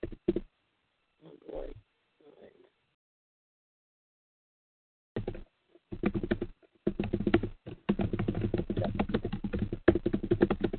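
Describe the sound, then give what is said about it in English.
Keyboard typing comes through as background noise on a call, rapid, muffled clicking: a few brief taps, a quiet pause, then a dense, steady run of keystrokes that continues to the end. “I don't know if you're typing or what, but the background noise coming up.”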